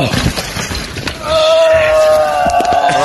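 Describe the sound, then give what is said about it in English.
A mountain biker who has had the wind knocked out of him gasps for breath: ragged, breathy rasping gives way to a long, strained, wheezing pull of air with a steady pitched whine that lasts nearly two seconds. “Listen to him try to breathe.”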